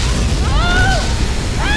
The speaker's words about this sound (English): The cavern wall of Leviathan City exploded 800 feet above Weller Street. A giant spray of rock and seawater showered down upon the street. Boulders the size of automobiles rained down on the citizens, obliterating the structures beneath.